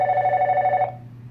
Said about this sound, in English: But it is going to ring. Typically, people know not to call while I'm recording. Yes, that is a phone that you hear. And I did not know it rings this long. It should go to voicemail. And it has went to voicemail finally.